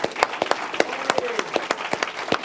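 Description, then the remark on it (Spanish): An audience applauds in a morning church service, giving a clap offering to the Lord, with many hands clapping in a steady, dense patter and sharper individual claps standing out at irregular moments. No one speaks over the applause. “That you give a clap offering to the Lord.”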